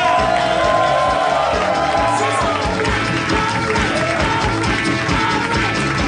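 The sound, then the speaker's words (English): A live audience at the Harmontown show in the Nerd Melt Theater at Meltdown Comics, California, cheers and applauds loudly and steadily as Dan Harmon is welcomed, with whoops and shouts rising over a dense wash of clapping that holds for several seconds. “What a crowd!”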